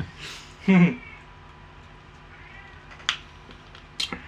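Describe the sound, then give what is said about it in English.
A cat lets out a short, fairly loud meow near the start, followed by quiet background with a few faint clicks and taps later on. “This cat's gonna be in the background the whole episode.”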